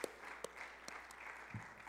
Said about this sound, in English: So if we could just give some round of applause for our pastor through your phones.